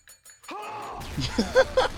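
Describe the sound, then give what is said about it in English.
A few faint clicks, then a sharp gunshot sound effect from a Breaking Bad sound button bank, where Gus gets shot, bursts in with a ringing, glassy tail that gives way to a loud, rumbling, noisy stretch with brief high chirps. “I think that's a gunshot.”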